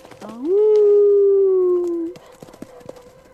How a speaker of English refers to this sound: Get out of here, mutt, before I show you what a bad dog you are.